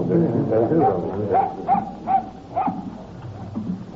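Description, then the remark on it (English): A dog gives a run of short, high whimpering yips and barks, about five sharp bursts in close succession, with muffled voices and movement underneath at the start. “Whose dog is this?”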